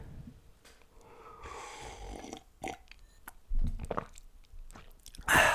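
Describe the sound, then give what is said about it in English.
Sips from a pint of water mixed with flavoured berry creatine powder, with wet mouth noises and a few audible swallows, ending in a louder gulp and a breathy exhale; no one speaks. “I'll just have a sip of my drink.”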